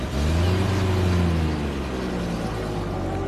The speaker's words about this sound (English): And then, on Saturday, everything went wrong. A big van arrived. It swallowed all the boxes and furniture and curtains, and it drove off.